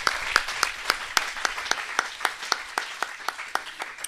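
An audience applauding steadily: a dense wash of many hands clapping, with sharper individual claps popping out above it at an irregular, quick rhythm, moderately loud and with no voices.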